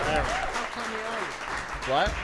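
A steady burst of audience applause fills the whole clip as a guest comes up to join the hosts, with people whooping and cheering loudly over the clapping.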